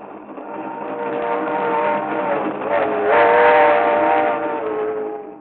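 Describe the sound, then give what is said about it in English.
A train to Miami rumbles steadily along while its whistle sounds in long, sustained tones, swelling louder midway through before easing off, continuous with no voices. “But on a train to Miami...”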